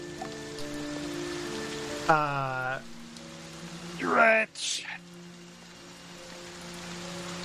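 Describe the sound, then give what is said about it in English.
Steady rain patters on a surface as a continuous hiss throughout, with sustained musical tones and a brief spoken voice layered over it. “The sound of thunder. Delightful. And rain.”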